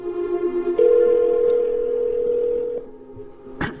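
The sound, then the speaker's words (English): An outgoing phone call's ringing tone as an iPhone calls a mobile number: one steady electronic tone held for about two seconds, with a few soft clicks around it. It is clear, and no one speaks. “I'll call his mobile number right now. And now we are calling Johnny here.”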